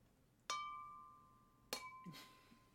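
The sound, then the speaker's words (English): Two bright clinks of beer glasses about a second apart, each with a clear ringing tone that lingers and slowly fades, with no one speaking. “Cling! Cling! Why did that sound like it actually went? Because your glass goes off.”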